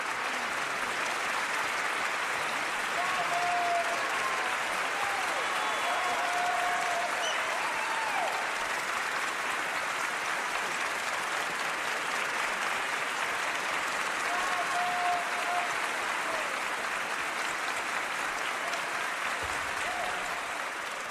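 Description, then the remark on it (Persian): Sustained applause from a large audience at the Oscars ceremony, lasting 12 minutes for Charlie Chaplin, fills the whole stretch, dense and steady without pause, with a few brief cheers or whistles rising faintly above the clapping. “مردم دست میزنن، تشویق میکنن، برای 12 دقیقه این کار رو انجام میدن.”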